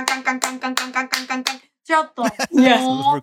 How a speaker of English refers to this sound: That is basically a bass synth doing 8 notes. And claps.